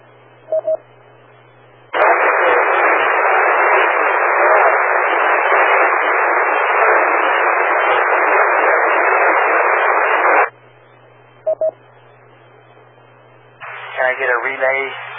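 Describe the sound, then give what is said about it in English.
A loud burst of radio static hisses steadily for about eight seconds, covering a weak station's transmission and drowning out any signal, bracketed by brief beeps, a low hum and a faint garbled voice near the end. “Station, I could not pull anything out of the white noise.”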